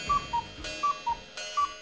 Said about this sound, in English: Cuckoo. Cuckoo for Cocoa Puffs. Hey, I'm right. Cuckoo for that that cuckoo clock noise.